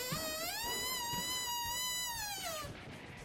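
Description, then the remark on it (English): A door creaks open with a long, high-pitched squeal that rises, holds steady for a couple of seconds, then sags and fades, with faint low thumps underneath. “What is that? The door's opening.”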